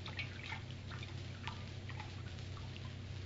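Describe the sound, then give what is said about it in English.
Water drips and trickles in small, irregular splashes from a wet cloth as someone bathes an injured man's temples, quiet over a low steady hum, with no one speaking. “Here, Captain, is the water and the bandage. I'll bathe his temples.”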